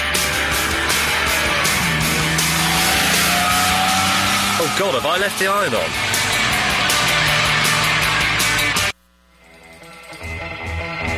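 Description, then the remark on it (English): A Triumph TR6 sports car engine roars steadily as it drives on an open road, rising and falling, with a brief tire screech partway through; a voice speaks over it before the engine noise cuts off abruptly. “What a road. What a car. What a day.”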